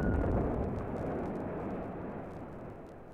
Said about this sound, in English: Certain sounds can be both felt and heard. An explosion at a distance can knock you down.